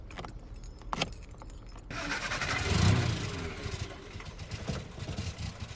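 Keys jingle briefly, then a car engine turns over and settles into a steady idling rumble with a broad hiss, peaking loudest just after it catches. No one speaks.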